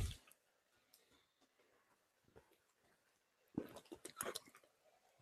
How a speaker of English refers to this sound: I'm sure you all love hearing the sound of me drink water.